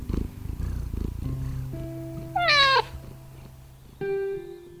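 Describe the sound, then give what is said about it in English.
A grey, fluffy domestic cat named Pearl purrs in a steady low rumble, then lets out a rising meow and, near the end, a second drawn-out meow. “This is my cat, Pearl.”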